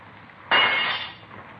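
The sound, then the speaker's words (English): A single sharp crash as a man breaks a window that would not open, to reach a man inside a room, loud, with a bright ringing shatter that fades over about half a second against a quiet background hiss. “I'm going to have to break this man. Well, I don't care as long as you get to him.”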